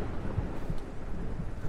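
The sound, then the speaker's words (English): Heavy rain pours in a steady, dense hiss, with a deep rumble of thunder rolling underneath. There are no voices. “Babe, I asked tensely as the downpour intensified.”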